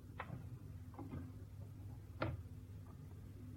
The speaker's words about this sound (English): Oh, more electronic birds?